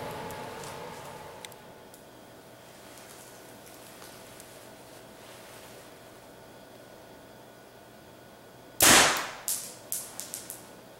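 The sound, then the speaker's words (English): After a stretch of low background hiss, an arrow shot from a bow rips through paper, to check the bow's tune, with a sharp, loud crack, followed by a few quick fading rattles and ticks. No one speaks. “Shoot it through paper and see what it does.”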